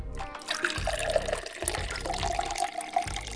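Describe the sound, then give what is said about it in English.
Water pours steadily into a glass for a few seconds, a continuous splashing gurgle with a faintly ringing tone as it fills, no voices present. “So get comfortable and pour yourself a glass.”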